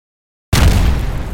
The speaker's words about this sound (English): That's a nice explosion if you really think about it. This, you can hear the rocks going around.